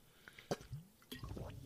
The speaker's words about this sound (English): I took a sip of water right there because it was so glorious to get up while the place is still on fire, pass it off to the next man, and get my butt out of there.